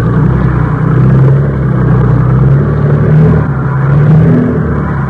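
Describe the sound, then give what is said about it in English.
A sampan's motor drones steadily and loudly at sea at night as it tows a raft through a pounding sea, a low rumbling engine hum with slight swells in pitch and volume throughout, with no voices over it. “Can't our motor be heard? No. Anyway, we'll transfer to the raft soon. I know it sounds loud right here, but in this weather, and with that sea pounding, they...”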